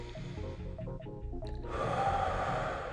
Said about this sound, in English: A whole lot of reasons to speed up, worry, lose focus, react. But I'm breathing,